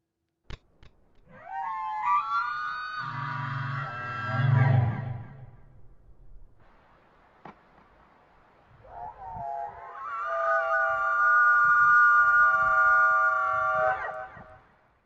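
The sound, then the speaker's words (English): Two long, eerie elk calls altered with added effects, each a loud drawn-out wail with strong harmonics, separated by a few seconds of quiet; the first carries a deep rumbling undertone. “Because so immediately in my head, I'm like, I know it's an elk, and they did a lot of like extra stuff to it, but that is terrifying.”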